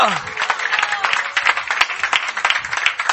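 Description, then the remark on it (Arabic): A church audience bursts into applause to honour the Lord, many hands clapping in a dense, steady wash for a few seconds, with scattered voices mixed into the noise. “أنه نزقته ونعطيه زقفة يا أحبة.”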